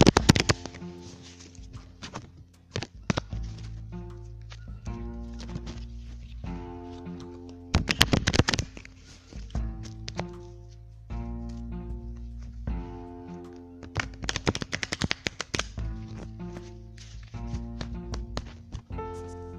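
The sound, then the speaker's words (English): Several crisp bursts of a deck of cards being riffle-shuffled, each a rapid fluttering crackle, separated by pauses, with soft music playing steadily underneath. “Okay, you could tell I have my cards out because I did that little shuffle for your ASMR benefit.”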